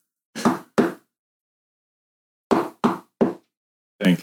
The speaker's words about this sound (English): three short knocks, three long knocks, and three short knocks again, because that's SOS.